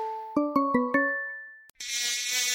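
In an ad for Skeeter Hawk mosquito defense, four quick bright chime notes ring out and fade, then a sharp click cuts to a loud mosquito buzz that whines steadily until the end, with no talking.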